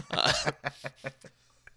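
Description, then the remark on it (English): One harsh, loud cough bursts out as a chip being eaten is coughed onto a microphone, followed by a quick run of four or five shorter, weaker coughing hacks that trail off, with no talking. “I just coughed a chip on my microphone.”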